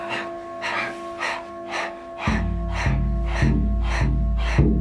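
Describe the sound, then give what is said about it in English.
Breath of fire: quick, forceful breaths pumped through the nose while pumping the navel, in a steady rhythm, about nine sharp bursts in five seconds, over a low sustained drone that swells midway. “a rapid inhale and exhale through the nose as we pump the navel”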